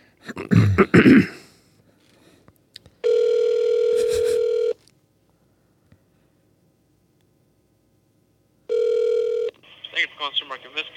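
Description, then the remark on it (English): A phone line's ringback tone sounds twice while a call is placed to order delivery, steady buzzing rings separated by a long pause, after a brief throat-clearing cough; a voice begins answering just after the second ring. “I'm going to call Minsky's then.”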